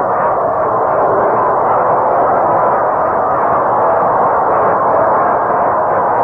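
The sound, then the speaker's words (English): A baseball stadium crowd cheers in a steady, loud roar that holds at full strength for about six seconds without letup, a dense wash of many voices with no single speaker standing out. “Hey, yes, rooting up a storm.”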